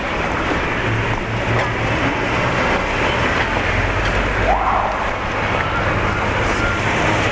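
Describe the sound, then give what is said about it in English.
Loud, steady rumble inside a moving city bus riding into downtown, with a deep engine drone and road noise filling the space, plus a brief rising squeal midway through. “but that was probably one of the noisiest bus rides I've had since I've been here.”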